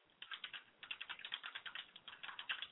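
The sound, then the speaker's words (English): Rapid, steady clicking of fingers typing into Google on a computer keyboard, fairly quiet, with a brief pause after the first few keystrokes before a continuous burst of typing. “I'm actually typing into Google right now.”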